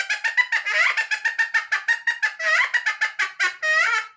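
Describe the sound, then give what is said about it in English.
Rapid, loud chicken clucking from a drummer's trap sound-effect device made by the Duplex company, used as a comedy sound: a quick chain of about twenty sharp, nasal squawks, with no talking and a few longer drawn-out cackles mixed in. “And another comedy sound, believe it or not, I've played more than one silent film where the guy crashes his car into a chicken coop and he leaves and there's chickens all over him.”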